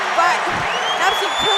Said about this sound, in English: By Kira Lieber and Sierra Pritchard to be able to get that point towards the Rams side, and the crowd is going wild. Not only did the crowd go wild, but the CSU bench went wild. Almost rushed on the court.